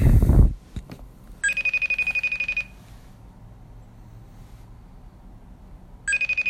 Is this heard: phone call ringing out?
yes